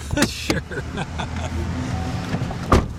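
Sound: car engine idling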